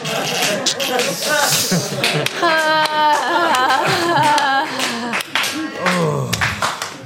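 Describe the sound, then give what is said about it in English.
A thin, half-hearted round of applause from The Nerd Degree audience after a mock sodium bromate advert: scattered, uneven claps that never build into a full ovation, mixed with overlapping voices murmuring and calling out throughout. “It's the most unenthusiastic nerd degree round of applause I've ever heard.”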